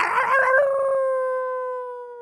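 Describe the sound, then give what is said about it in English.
A wolf lets out a single long howl that starts rough and breathy, then settles into a steady, clear tone sliding gently downward and slowly fading, heard alone. “It's Elvis Wolf.”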